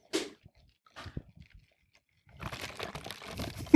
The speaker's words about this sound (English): Could you hear that? Yes, I could hear that. And everyone now will be able to hear that. Yes, that was me blowing bubbles in my soda.